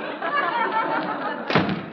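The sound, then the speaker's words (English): A single heavy door leading to an alley slams shut near the end as someone goes out, a sharp thud cutting through a steady background of murmuring voices and noise. “why, sir, that door leads in the alley.”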